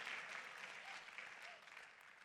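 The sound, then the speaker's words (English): An audience claps steadily for a couple of seconds, a dense wash of many hands, easing off slightly toward the end with no voices over it. “Come on, clap, audacious, like we're going to live with eternal value, in eternal purpose, and heaven's agenda.”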